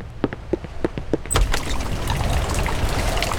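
A handful of separate, evenly spaced drips give way abruptly to a steady, dense hiss of heavy rain pouring down, loud and continuous, with no voices.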